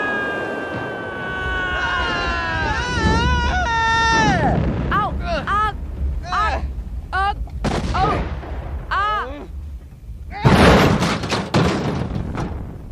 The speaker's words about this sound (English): Our ship must have been hit in the crossfire. We came down hard, but... but we landed right in the middle of the city!